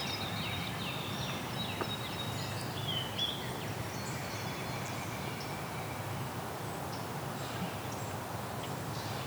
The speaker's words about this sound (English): Palm warblers above me too.